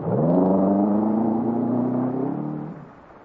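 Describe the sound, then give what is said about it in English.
A car engine roars loudly during a chase, its pitch climbing as it accelerates, then holds a steady drone before fading as the vehicle pulls away. “I drive fast enough to keep out of range, but not fast enough to lose them.”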